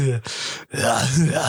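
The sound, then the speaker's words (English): Heavy, rough breathing by a man right up against the microphone: a short breath, a brief pause, then a longer, loud huffing exhale with a slightly voiced, panting edge. “He's breathing really heavily.”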